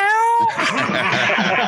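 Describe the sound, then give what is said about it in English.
A person on a hunt, trying to throw out a cow call, instead imitates a cat with one drawn-out, high-pitched meow lasting about half a second, then breaks straight into loud laughter and chatter. “So when I first went to throw out my first cow call, I went back to my cat calling this.”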